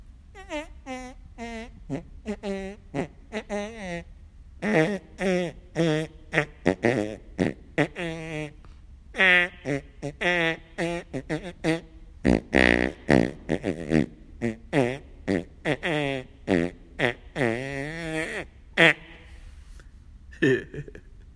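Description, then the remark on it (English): A tune influenced by Star Wars, built from short, pitched fart noises played in quick rhythmic bursts, rising and falling like a melody, loud with brief pauses between phrases. “Anyways, so this is the influenced by Star Wars fart song.”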